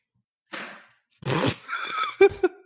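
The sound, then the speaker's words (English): A doggy door flap swings and clatters as dogs come in and out: a soft brushing thump, then a louder rattling bang, followed by two short squeaky knocks as it settles. “Yeah, so if you're hearing the flap, that's why there's a flap.”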